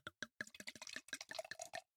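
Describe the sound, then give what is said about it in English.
Wine glugs out of a bottle into a glass in a quick series of gurgling bursts, fairly clear, lasting about two seconds before stopping. No one speaks. “Get some wine and hey, look at that pour.”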